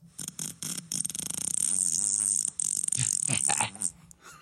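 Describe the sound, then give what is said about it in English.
Someone blows a loud, sputtering raspberry with their lips, imitating a fart: a few short bursts, then a long wavering buzz lasting a few seconds, without speech. “Was that like a fart?”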